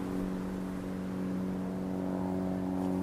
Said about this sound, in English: A single engine, singing a quiet, sweet sound, and approaching directly on course.